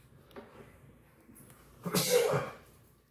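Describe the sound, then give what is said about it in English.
A single sharp, explosive sneeze bursts out after a short quiet lead-in, with a brief breathy wind-up before the loud release. “And it's very provocative because, pardon me, I have a sneeze coming.”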